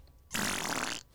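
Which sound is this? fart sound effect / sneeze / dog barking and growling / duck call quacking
fart sound effect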